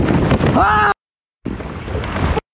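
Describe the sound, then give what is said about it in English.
Rushing ocean water whooshes loudly around a fishing kayak off the coast of Oahu as a tiger shark heads toward it, in two bursts separated by a short silence, with heavy wind buffeting the microphone and a brief voice-like cry in the first burst. “I hear this whooshing sound that sounds like a boat turned off its motor and is heading towards me.”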